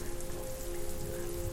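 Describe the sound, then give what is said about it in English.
Steady rain falls in a dense, continuous hiss, drops pattering on a surface without pause, with a faint low hum running underneath. No voices are present. “Okay, so you three speed off into the rain as you flee the Goddard Manor with what seems like more questions than answers.”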